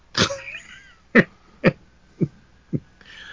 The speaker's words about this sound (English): Bless you.